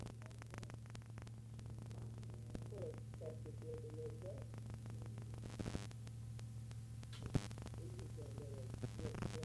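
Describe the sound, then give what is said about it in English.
A steady low electrical hum from a cassette player left running in a room, with tape hiss and scattered clicks, and faint muffled voices in the background. “This is just a cassette player that's on in a room.”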